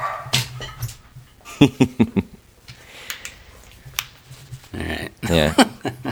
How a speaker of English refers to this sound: And I have to shut this down. This dog is upset.